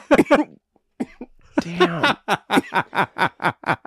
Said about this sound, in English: So the cold can induce that cough, but you know, one of the things that we've talked about with the bronchioles in your lungs is that that actually gets the THC into that a little bit faster.